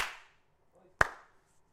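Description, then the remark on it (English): A single sharp hand clap rings out, crisp and loud with a short decaying tail, surrounded by near silence and no talking. “Clap.”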